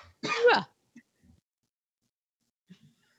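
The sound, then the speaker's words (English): A woman gives a single loud, rasping throat clear and then hits a button, followed by a few faint soft clicks and rustles in near silence. “She coughed and then she hit the button.”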